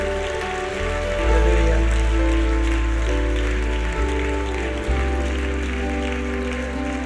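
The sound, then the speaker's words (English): An audience gives a clap offering at the close of a church meeting, applauding in a steady, dense clatter of many hands, sustained for several seconds over loud, held organ or keyboard chords that shift pitch beneath it. “Shall we give him one clap offering as we close the meeting tonight?”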